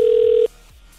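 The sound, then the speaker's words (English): A loud, steady electronic telephone tone, like the ring of an outgoing call placed to a radio contest qualifier, sounds for about half a second, then cuts off, leaving a faint hiss. No one speaks. “To qualify, you got to pick up to answer, right? That's how phones work.”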